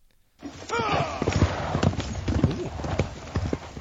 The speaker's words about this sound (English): A knight charges up the slope at you. His horse pounds at the ground, carrying the heavily armored warrior as if you were a child's doll.